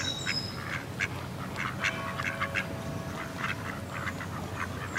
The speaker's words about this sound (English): One of the things that I really enjoy about Odense is the possibility to find quiet spots around in the city. For instance, the sound that you can hear in the background, it's from a place called the washing site at Odense River.